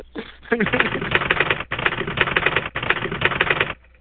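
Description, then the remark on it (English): A typewriter sound effect: rapid, continuous mechanical typewriter clatter in three dense bursts separated by brief pauses, fairly loud, with no voices present. “Run the typewriter again.”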